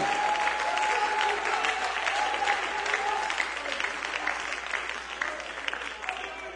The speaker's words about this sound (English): I wish you'd really clap your hands and believe that with me.